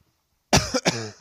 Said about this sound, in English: Cough right into the mic.